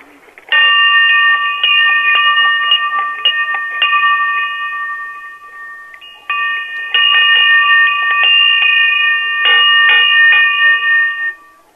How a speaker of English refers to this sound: We're going to have to do it's just to see what frequency it's ringing at, to see if we need to order a new bell. But I need you to ring it for about a minute. Like, continuously for a minute.